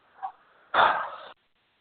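A dog gives a faint short yip, then one loud, drawn-out bark, followed by silence. No one speaks.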